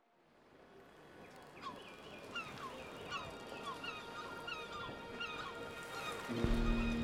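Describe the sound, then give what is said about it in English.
Several seagulls call repeatedly in overlapping squawks over a steady wash of background noise; a low droning hum enters near the end. “The day dawns bright, and the sound of seagulls is a comforting one.”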